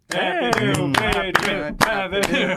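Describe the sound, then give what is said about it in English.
Several irregular hand claps from the hosts, celebrating a new patron, ring out over voices that cheer and sing along, the sharp slaps cutting through a steady stream of vocal sound for a few seconds. “I mean, hey, if it gets us more patrons, I'll clap.”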